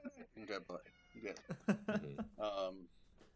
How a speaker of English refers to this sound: Hello, cat. My cat has joined. My cat's joined the shot. That's Chester. Hi, Chester.